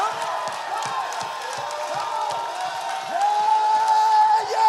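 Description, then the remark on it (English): A crowd standing and shouting and cheering together in praise to God over steady, rhythmic clapping, with a few higher whoops rising out of the loud, continuous mass of sound. “Oh, somebody stand on their feet and shout and clap to God.”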